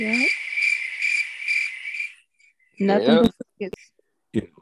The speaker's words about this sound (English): Nothing but crickets.